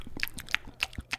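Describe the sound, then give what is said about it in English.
Quiet chewing and munching on food, with several short crunchy bites in a quick, slightly uneven rhythm and no talking. “I feel like we're always gargling on something, always slurping something down, always munchy.”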